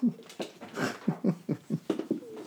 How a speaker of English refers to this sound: Don't worry about those dogs, Moose.